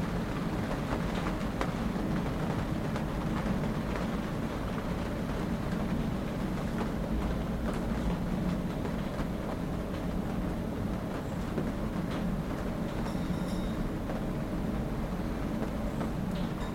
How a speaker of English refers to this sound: Feel that the sound of the rain is as close and as intimate to you as are your thoughts and feelings.